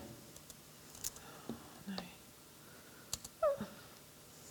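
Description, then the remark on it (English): Soft, irregular clicks and taps, like someone typing sporadically on a computer keyboard, come through quietly against a low background hiss with faint breathy murmuring. “Too long without touching my keyboard.”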